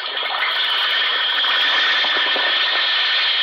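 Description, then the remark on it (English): An Alka-Seltzer effervescent antacid tablet fizzes in water: a steady, dense crackling hiss of tiny popping bubbles that holds an even loudness throughout, with no voices. “Listen to it fizz.”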